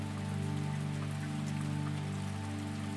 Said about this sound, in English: Think of the rain falling. Allow your mind to follow the path of a raindrop, beginning in the rain cloud where it starts to form.